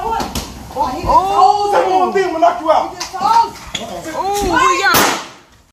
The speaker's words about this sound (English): And the son comes in banging. Is that what the gunshot was? Yeah, that's what that shot was. Okay. That was a 14-year-old.